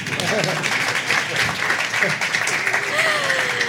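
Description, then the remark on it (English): Steady audience applause for a panel at the close of a Jewish Boston event fills the whole stretch, a dense, even wash of many hands clapping at a fairly loud level, with faint voices and a few whoops mixed in. “Let's give them a huge round of applause, please.”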